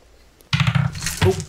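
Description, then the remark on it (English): After a short quiet moment, a large fist-sized die clatters loudly as it is rolled on a table right next to the microphone, then falls off the table onto the floor with a second sharp rattle near the end. “I rolled it right next to the microphone. Yeah, it fell right off the table on the floor and as under.”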